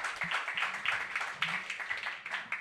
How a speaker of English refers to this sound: let's give a big round of applause for all of our open mic readers. You guys were phenomenal.